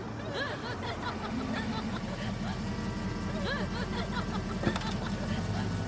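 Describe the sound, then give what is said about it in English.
A car pulls up and its engine idles with a steady low rumble, fairly loud, while voices murmur and chuckle over it; a brief sharp knock sounds near the end. “Your car, sir.”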